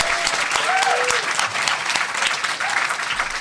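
Steady applause from a live audience at New York Comic Con for the people who turned out, dense crackling claps sustained at an even loudness throughout, with a couple of brief whistles or cheers rising above it.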